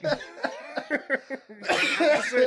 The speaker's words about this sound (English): You can cough, but you have a reputation of coughing a lot.